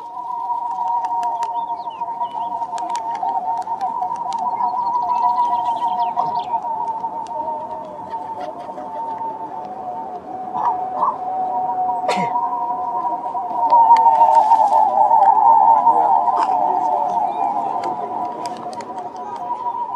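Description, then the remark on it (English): A flock of Birmingham roller pigeons wearing special pigeon whistles produces a steady, airy drone of overlapping mid-pitched tones that waver and beat against each other, swelling louder in the latter half, with no talking. “This is Nathaniel Mann's recording of a flock of Birmingham roller pigeons wearing special pigeon whistles.”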